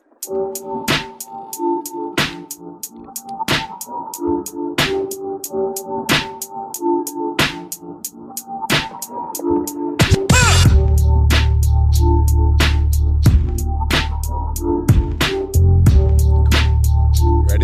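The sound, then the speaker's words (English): An instrumental hip hop beat plays with steady, punchy drum hits over a looping melodic sample; a heavy, booming bass line kicks in partway through, and no one speaks or raps. “We're going to do breathing room.”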